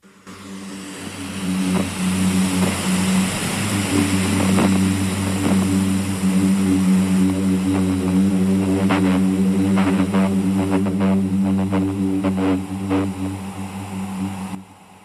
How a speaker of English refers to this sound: And so an audible vibration can develop when sufficient amounts of sand compress the air within this moving sand. All right, take a listen to this.